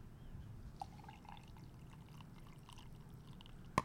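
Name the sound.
coffee poured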